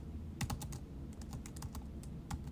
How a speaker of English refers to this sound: Okay, I was legit finishing up an email, but I think the typing right there is just for dramatic effect.